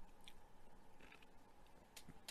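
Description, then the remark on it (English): Someone chews ice: a few sharp, crackling crunches spaced irregularly over a couple of seconds, quiet overall with no talking. “Anybody else still chew on ice?”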